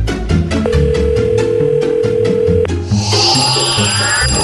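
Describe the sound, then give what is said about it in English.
A telephone rings as a steady electronic tone held for about two seconds over a rhythmic musical bed, followed by a bright, shimmering swell of high tones. “So what do you say we hop on the spirit phone and see what celebrities she might or might not be welcoming into the afterlife or what she's doing with her already dead celebrities?”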